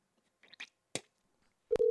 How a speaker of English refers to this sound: It's ringing.